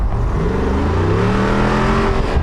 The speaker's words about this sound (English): Oh, was that not the tires? No, that was not the tires. Oh, sorry. Exhaust note of 392.